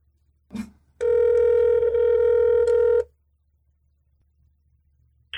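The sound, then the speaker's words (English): A call from a mobile phone to a mother's phone number rings out over speakerphone: a short click, then one steady two-second electronic ring tone, followed by quiet. No one talks. “I think he's looking for his mother's phone number. Should I put it on speaker?”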